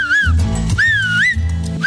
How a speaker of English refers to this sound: You want to make sure you have a complete seal with your fingers. Now just blow through the hole between your two middle fingers until you get that high-pitched, commanding, loud whistle.